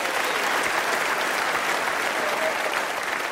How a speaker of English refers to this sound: Clap for the Spick. It's the hardest he's worked in 20 years.